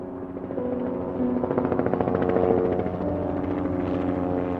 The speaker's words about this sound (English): Mayo 1 is an emergency medical helicopter. It's dispatched from St. Mary's Hospital in Rochester, approximately 30 miles east of Claremont in Olmsted County.